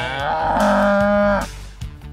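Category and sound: animal, cow mooing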